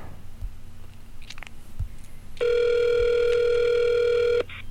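A phone call with a doctor drops with a faint click, then a loud, steady electronic phone tone holds for about two seconds before cutting off abruptly, over a low background hum.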